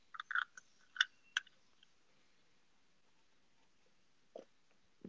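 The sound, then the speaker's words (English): Someone takes a quiet sip of Busch Light beer, with a cluster of small wet slurping and clicking mouth sounds near the start and a couple more soft ones toward the end. “I was waiting for you to take your sip.”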